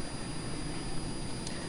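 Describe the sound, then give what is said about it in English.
An airplane flying overhead during an outdoor service, a steady, broad roar with a deep low rumble that holds even and unbroken throughout, with no one speaking. “Hello, airplane.”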